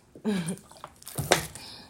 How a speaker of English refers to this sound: Hold on, I got to take a sip of water on this one.